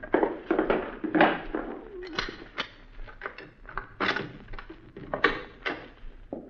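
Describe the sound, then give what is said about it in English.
A series of irregular clunks, scrapes and shuffles as things are moved away from a door, with a few sharper knocks as the door is handled and opened. “Let me get this stuff away from the door.”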